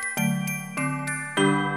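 Jingle bells ring out in three struck, pitched tones about half a second apart, each sustaining with bright shimmering overtones, while lighter jingly taps sound in between. No one speaks.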